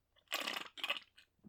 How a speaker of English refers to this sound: So, gotta take a big swig for him. Audible clank of our beers. Clinks.